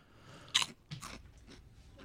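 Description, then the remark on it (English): A sharp crunch of someone biting into a crispy Chipster snack chip, followed by several softer chewing crunches spaced irregularly over a couple of seconds, with no talking. “You want to hear my crunch?”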